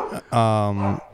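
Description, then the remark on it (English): A dog lets out one loud, drawn-out bark at a man at the door, bracketed by brief bits of human voice before and after. “I wish these dogs would just shut the fuck up right now.”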